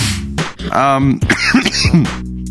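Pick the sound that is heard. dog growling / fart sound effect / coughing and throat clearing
coughing and throat clearing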